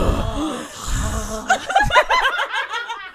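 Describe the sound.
A voice imitates hard, heavy breathing, a rapid run of voiced huffs and gasps that follows a brief low murmur, almost like panting laughter.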